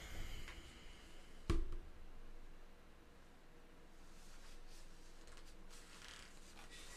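Dry rustling and rubbing of high-quality paper stock, with a sharp handling knock early on followed by soft, intermittent scraping and crinkling strokes over a steady low background hiss.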